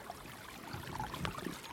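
A small moorland stream trickles and babbles steadily, a soft continuous wash of running water with a few brief splashy bubbles, and no one speaking.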